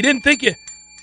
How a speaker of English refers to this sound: You didn't think you'd like to hear the sound of that bell, did you? It's the return of the bell. It's back.